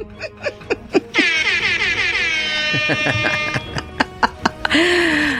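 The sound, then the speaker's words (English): A loud, sustained air horn blast with dense, bright harmonics blares from about one second in, while scattered short bursts and snickering laughter pop around it, ending in another horn-like blare. “That air horn brought to you by Vintage Sound Effects.”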